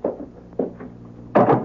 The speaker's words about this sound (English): Let me close the door, huh?